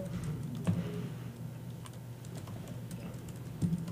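Typing on a computer keyboard, quick irregular clicks of keys going on and off at a moderate distance over a low steady hum, with a couple of slightly heavier keystrokes.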